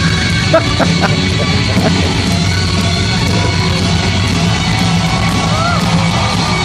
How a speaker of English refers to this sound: The crowd is going wild. Oh, man. I love that. I just love that.